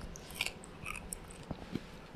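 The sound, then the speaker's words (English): Crunching of a hard corn nut snack being chewed, a series of sharp, irregular crunches over about two seconds, fairly quiet with no talking. “I think it adds to the crunchy element. Okay, I'll try it. It's a piece of corn. Like a corn nut.”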